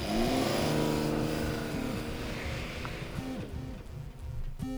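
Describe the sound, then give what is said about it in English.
A car engine revs hard and accelerates with the driver's foot firmly on the pedal, its pitch climbing in a loud roar before easing into a steadier drone as the vehicle pulls away, with no voices. “Within 2 minutes, the two of us were in my car, my foot firmly planted on the pedal.”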